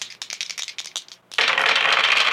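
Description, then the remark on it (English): Three dice rattle in a quick burst of clicky shakes, then spill out into a steady rolling clatter across a hard surface. No voices. “So I think that I should have three dice. Sure, you can take three on this one.”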